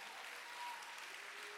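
An audience claps their hands in praise in a dense, steady wash of applause that holds at an even level throughout, with no voices rising above it.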